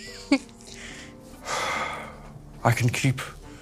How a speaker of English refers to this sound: Oh my god. Stop breathing so heavy.